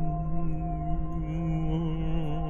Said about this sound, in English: And as you approach the crystals, they seem to hum. In the background, over the top of the subway, you hear a hum.